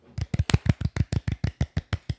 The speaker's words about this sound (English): Okay, let's give the golf clap.